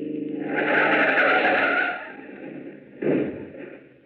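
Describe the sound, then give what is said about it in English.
A car's tires screech in a long skid for about two seconds as it is run off the road into a ditch on a long stretch of road, then a rough engine rumble follows with a short thudding jolt near the end, loud. “Step on it now. Run her off the road. Now, run her off in that ditch.”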